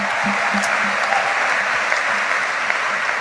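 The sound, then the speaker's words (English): A church audience claps their hands for the visiting pastors in a steady, dense burst of applause that fills the space evenly, loud and continuous throughout with no voices standing out. “Let us clap our hands for all the pastors who are here.”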